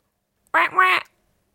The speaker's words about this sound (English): You want it to be a duck quacking? That's what we did last time.